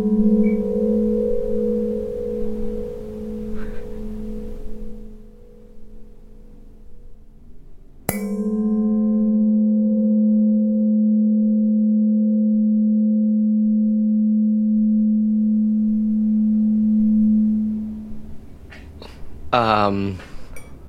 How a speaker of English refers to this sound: That it sounds like somebody hitting a decanter to make sure that it's really glass. Okay, that's a good guess because these are two pieces of glassware cheersing.